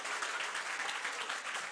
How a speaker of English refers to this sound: Wow, that's great.Okay, come on, give yourselves a clap.